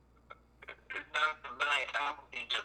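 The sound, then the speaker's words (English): A tinny, telephone-quality voice breaks up into choppy, garbled bursts with brief dropouts between them, as if a phone line is cutting in and out; the speech is unintelligible. “Okay, and I'm sorry, your phone is going in and out. I just did not hear the last statement.”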